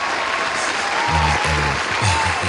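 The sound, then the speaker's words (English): An applause sound effect: a steady wash of dense clapping from a crowd, sustained at an even loudness throughout with a few low thumps partway through. “I'm going to put the applause in.”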